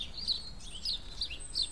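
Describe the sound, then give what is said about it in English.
House sparrows chirping, a handful of short, bright chips repeating irregularly over a soft outdoor background hum. “Yeah, all that chip, chop, chip, chip, chip. That's house sparrows.”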